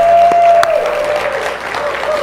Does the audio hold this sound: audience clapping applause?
yes